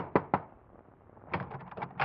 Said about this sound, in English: Your hand trembles as you knock on the door.